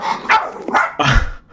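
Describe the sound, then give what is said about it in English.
A dog barks several times in quick succession, fairly loud, the sharp yaps overlapping with a slight whiny edge before cutting off, barking at someone walking past the window. “Have you set the dogs on”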